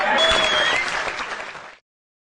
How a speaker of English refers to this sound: I had to really cut down that clip because the applause and cheering just went on and on and on. Aww. It was so loud, yeah.